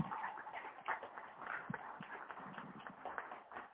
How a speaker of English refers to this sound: Let's give our youth a big round of applause.